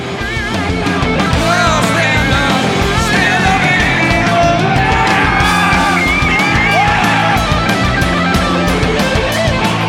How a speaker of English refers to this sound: Tosses it into the crowd, and a lucky crowd member gets to sing.